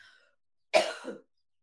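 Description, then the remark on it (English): A single harsh, congested sinus cough bursts out, a rough throaty hack lasting about half a second, with faint breathy sounds just before it and quiet afterward. “Thank you for sticking through with my sinus coughs.”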